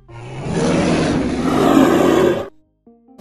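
A bear lets out a loud, rough roar that holds steady for about two and a half seconds, then stops abruptly, leaving a short silence before a faint tonal sound.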